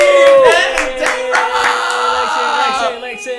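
A burst of audience applause and cheering, loud and steady for a few seconds, with sustained tonal whooping or music layered over the dense clapping.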